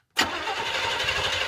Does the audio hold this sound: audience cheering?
no